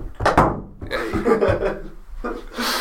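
door closing sound effect

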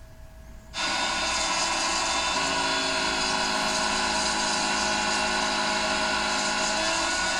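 leaf blower running

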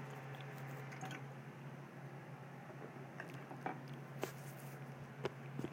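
drinking water

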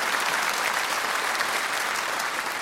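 audience applause

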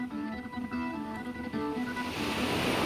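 ocean waves

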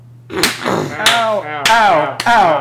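hand claps

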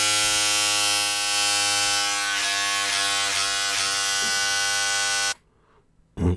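electric shaver buzzing

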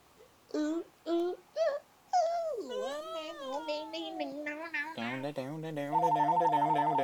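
cell phone ringing

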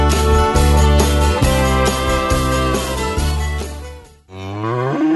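cow mooing

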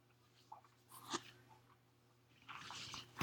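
sipping tea

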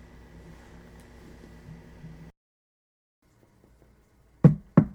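knocking on a door

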